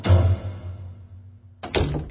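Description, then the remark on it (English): A dull thump fades out, and after a short quiet stretch a quick series of sharp knocks on a door lands, loud and close together, with no voices. “Someone's at the door.”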